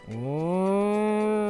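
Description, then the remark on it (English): A single long, loud cow moo, rising in pitch at the start and then holding steady for over a second, with no other sounds around it. “I'm just raising my hands up to pet a cow that passes by.”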